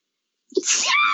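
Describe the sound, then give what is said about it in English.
A single sneeze bursts out after a moment of silence, starting with a sharp intake and breaking into a loud, breathy, drawn-out blast. “Bless you. Thank you.”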